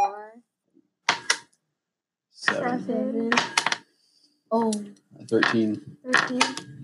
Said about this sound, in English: So on a miss, on that one is a miss, what's going to happen is he takes half damage on there. So you're going to roll that white dice 4 times and take half that damage.